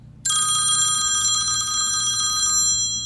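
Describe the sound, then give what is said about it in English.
A telephone bell rings loudly in one long, rattling burst of about two seconds, then decays away, with a low steady hum underneath and no voices. “I can't bring myself to answer the phone.”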